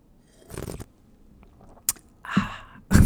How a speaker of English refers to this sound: Well, you know, I'm not really sure how to end this episode, so I'm going to give you a little coffee sip. Here we go.